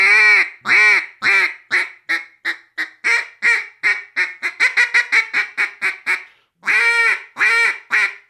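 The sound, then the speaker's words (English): A duck call blows a long run of loud, nasal hen quacks that speed up into a quick rhythmic chatter, then falls briefly silent before two more drawn-out quacks, with no talking. “do a little double cut, more realistic, authentic, mixing in some lonesome hens and some quacks”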